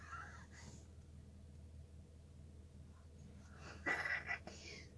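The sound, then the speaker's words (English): A heavily loaded car stuck in mud: the engine rumbles steadily at low pitch, then briefly revs as the driver tries to rock it out and the tires spin and churn in the mud with a short, loud, gritty whir before settling back. “And then just spinning the tires or making it worse?”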